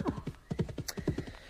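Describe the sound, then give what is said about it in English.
Horse hooves clip-clop in a steady, rhythmic walking gait, each footfall a crisp knock, growing a little louder as the horse, Hob, approaches. There is no talking. “And here comes my faithful Hob. Not as lovely as your Pearl, but he has surprised many men and outrun many horses.”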